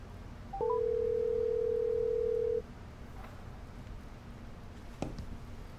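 A few quick electronic dialing beeps lead into one steady, fairly loud telephone ring tone lasting about two seconds, followed by a quiet line hiss and a brief click, as a phone call is placed.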